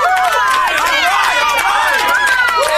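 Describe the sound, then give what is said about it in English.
A loud crowd cheers and whoops continuously after the 'stupid news' segment of a show, many voices overlapping with scattered clapping underneath, sustained for the whole moment without a break. “You do not need to hold your applause, ladies and gentlemen.”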